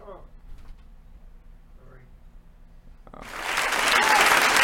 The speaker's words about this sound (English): Can we get an applause? I think it was great.